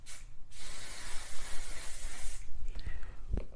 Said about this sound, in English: All right. Spray. Get a little bit of spray. Oh, no.